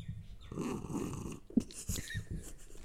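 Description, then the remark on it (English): Rustling, breathy drinking noises lead into a single sharp, low gulp about halfway through, followed by softer swallowing and mouth sounds. No one speaks. “Love that. That gulp.”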